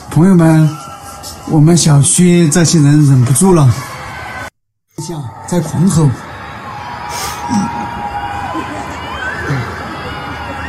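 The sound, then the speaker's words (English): Many residents of a housing compound yell and shout together, loud strained cries at first, then after a brief cutout a wider chorus of overlapping shouts spreading across the whole area, echoing as if across buildings. “朋友们，我们小区这些人忍不住了，在狂吼，不知道在吼啥，在一个片区都吼起来了。”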